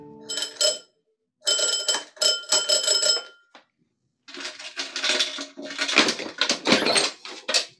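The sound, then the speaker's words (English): A door bell rings in several bursts, the first two short with bright, ringing tones and a longer, harsher stretch of jangling after a brief pause. It is fairly loud, with no talking. The bell is at a door marked manager, at the head of the stairs of a seedy-looking hotel upstairs over a Chinese laundry. “At the head of the stairs was a door marked manager. I rang the bell.”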